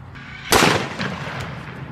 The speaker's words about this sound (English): She's literally shooting the phone.